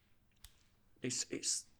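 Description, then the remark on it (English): The case of the SP is snapped shut into a microphone: one sharp click, a brief pause, then a quick flurry of bright, rattling clacks that ends abruptly against a quiet background. “Of the logo, and you get the nice clickety-clack.”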